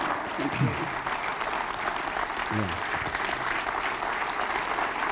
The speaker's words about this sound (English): Let's give them a round of applause for all that they have meant to us.